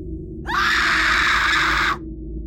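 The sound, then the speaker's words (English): A woman lets out a single loud, sustained scream lasting about a second and a half, piercing, over a low background rumble, then it cuts off abruptly. “…'s scream made us all jump to our feet.”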